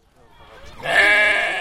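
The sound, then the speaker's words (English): A single sheep, led reluctantly on a yellow leash by a 7-year-old boy in Tripoli, Libya, during the Eid al-Adha Feast of Sacrifice, lets out a loud, drawn-out bleat, rising from a softer wavering start into a strong, strained cry that holds for most of the moment. “ties a yellow leash around the neck of a sheep and takes the reluctant animal for a walk.”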